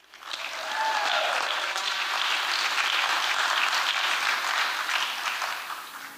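Sustained audience applause, a dense wash of many hands clapping that swells quickly, holds steady for several seconds, then begins to taper off at the end.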